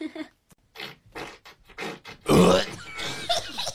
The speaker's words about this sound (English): This bitch out here farting. This bitch out here in Queen, she farting. You can tell that that shit came from the inside of her gut.